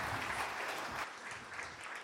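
A round of audience applause, steady dense clapping from many hands that holds at an even level for a couple of seconds without any voices over it.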